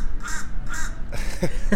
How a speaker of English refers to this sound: as the crow caws